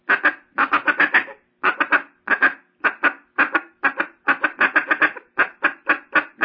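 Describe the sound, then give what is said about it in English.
A duck call is blown, imitating quacking in quick choppy bursts of three to five notes separated by brief pauses, loud and steady with no talking. “So they'll think it's a quacking.”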